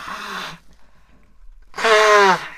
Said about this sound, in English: I'm going to lean this way and blow my nose.